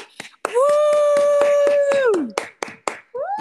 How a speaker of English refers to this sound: Can we have a round of applause for them?